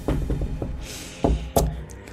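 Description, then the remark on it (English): Knuckles rap on wood, a quick run of four light knocks followed by two louder, spaced thumps, with no talking. “But now everyone in our home is well, knock on wood.”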